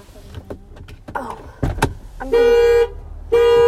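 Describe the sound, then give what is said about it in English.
A car alarm goes off, its horn blaring loudly in two long, steady honks with a short gap between them, preceded by a few mechanical clicks and thumps like a door or lock. “Yeah, say that the alarm went off.”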